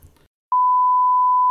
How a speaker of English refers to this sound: I'm gonna have to beep that out.